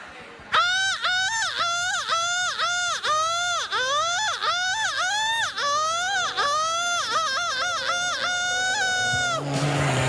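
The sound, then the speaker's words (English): A person imitates a seagull with a rapid string of loud, shrill, wavering squawks, over a dozen in quick succession for about nine seconds before abruptly stopping. “stop flapping your wings and get over here and give us your best seagull.”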